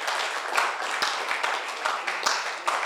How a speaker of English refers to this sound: I guess you were trying to clap for the Lord.